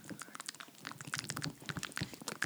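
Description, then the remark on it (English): A person chewing with wet, crunchy mouth sounds, a rapid irregular stream of clicks and smacks that continues throughout at a moderate, steady loudness with no talking. “You don't like the sound of people chewing.”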